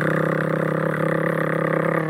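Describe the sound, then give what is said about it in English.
A voice imitates the harsh, droning buzz of a traditional electromagnetic coil tattoo machine, holding one steady, loud, mid-pitched rattle for about two seconds with no pause and no other talk. “The traditional noisy one, which is an electromagnetic coil, and then a rotary machine, which doesn't have two connecting metal parts, so you don't have the same kind of noise.”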